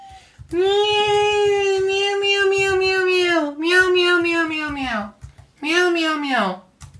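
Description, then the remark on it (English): A cat named Panty lets out three drawn-out meows, fairly loud: one long wavering cry, then two shorter ones that slide downward in pitch, separated by brief pauses. “Meow meow meow. Yeah, that's. Was that you? Oh. Nope, that's him.”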